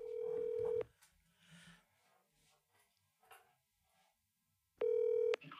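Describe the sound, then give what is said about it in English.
Telephone tones for a call made to reach a person back on the phone: two loud, steady electronic beeps, one at the start and one near the end, with a quiet stretch of faint shuffling between them. “Let's get him back on the phone.”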